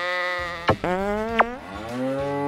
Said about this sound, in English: But she did give me this nifty new electronic noisemaker. It's got a ton of sounds.